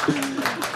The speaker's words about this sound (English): Round of applause.